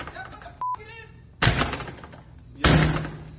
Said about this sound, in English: He's going erratic. He's about to break the door. I don't know if you hear that.